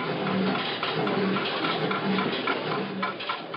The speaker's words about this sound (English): This machine washes dishes, not your husband.